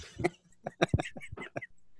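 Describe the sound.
A voice imitates Ferris Bueller's stiff, robotic-sounding synthesizer cough made by a computer machine: a quick run of several harsh, clipped bursts in an uneven rhythm, fairly loud, with no ordinary speech.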